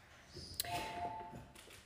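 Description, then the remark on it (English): A doorbell rings with a sharp strike followed by a single sustained mid-pitched chime tone that fades over about half a second, fairly quiet against faint background noise. “The door ran, and I literally forgot what I was going to say.”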